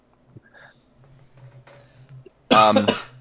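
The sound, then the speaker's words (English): After a quiet stretch with a faint low hum, someone lets out a loud, harsh cough, a quick double burst near the end, with no talking. “Who's this coughing?”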